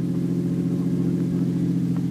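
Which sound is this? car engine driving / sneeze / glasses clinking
car engine driving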